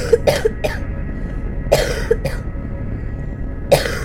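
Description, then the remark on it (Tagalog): A child coughs loudly, in three harsh bursts of two or three quick coughs each, spaced a second or more apart, with no talking. “Pero lumipas ang araw at napansin na lamang niya ang malalakas na ubo ng kanyang anak.”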